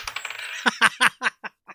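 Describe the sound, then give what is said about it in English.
Dice rattle briefly, then clatter onto a hard table in a quick series of sharp bounces that fade as they settle. Fairly loud, with no voices. “Dice throw.”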